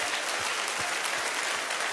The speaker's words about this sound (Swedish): Ge han en riktig applåd, det är faktiskt sant.